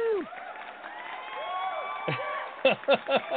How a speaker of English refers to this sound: We're going to give you a clap out. Here we go. Clap out. Here we go.